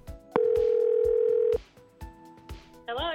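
A loud, steady telephone dial tone hums at a single low pitch for just over a second as a man calls his wife, then gives way to a fainter tone and a brief warbling signal, over a faint rhythmic thumping.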